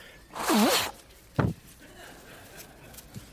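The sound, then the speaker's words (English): A forceful nose blow by a speaker on a microphone: a half-second breathy blast with a wavering, honking whistle, followed by a brief sharp snort, then quiet. “All right, I got to blow my nose, but I'm on a microphone.”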